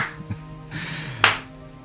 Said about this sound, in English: You hear some awkward claps. You see Faven doing a slow clap.